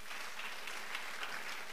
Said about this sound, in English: This your clapping is very weak.